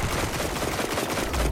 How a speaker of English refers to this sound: It's that hand cannon that's working on my nerves right now.